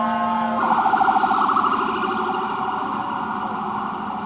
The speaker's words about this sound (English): I apologize. I just don't like sirens while you're talking about it.